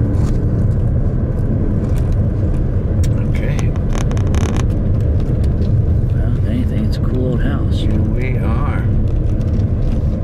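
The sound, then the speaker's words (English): A car rumbles past, a steady low road roar swelling into a brief louder whoosh midway, with muffled voices talking indistinctly underneath. “A car there.”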